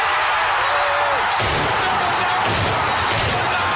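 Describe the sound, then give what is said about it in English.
Fireworks celebrating Villanova's national championship, exploding in a few irregular, deep booms, starting about a third of the way in, over a loud, constant roar that sounds like a cheering crowd. “Those are not gunshots. Those are fireworks.”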